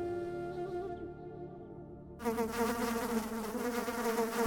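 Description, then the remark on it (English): Insects buzz steadily in a droning, harmonic hum that thickens and grows louder about halfway through, as if more of them swarm. No voices. “Bugs in my head. Buzzing around in my ears, in my head.”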